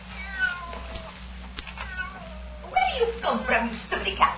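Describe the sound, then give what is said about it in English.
A cat shut in a bedroom meows several times in drawn-out, wavering calls, starting faint and becoming louder and more insistent toward the end, with a low background hum throughout. “Come from, silly cat. Go away.”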